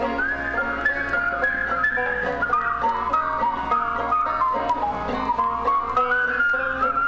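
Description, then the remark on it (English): Several people whistle at once, their shrill, wavering tones overlapping in a steady chorus that mimics a crowd of spring peeper frogs, continuous and fairly loud with no talking. “Sound like a bunch of spring peepers.”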